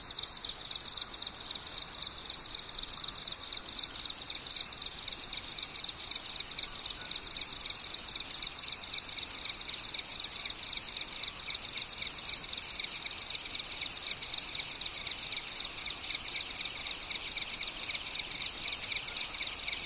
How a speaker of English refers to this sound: In the lower valleys, we always heard crickets and cicadas. They hummed and buzzed and made complex phasing rhythm patterns.